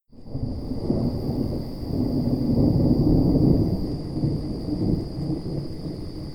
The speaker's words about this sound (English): By the time we pulled into Dode's farmhouse yard, the thunder was loud as God's bowling alley.